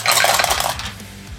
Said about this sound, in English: So let me roll damage here. There's a few dice I gotta get together here.